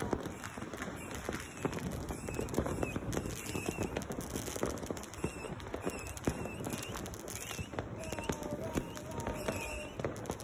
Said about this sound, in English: In Guatemala, there's a tradition of setting off fireworks on Christmas, so that's what we see here.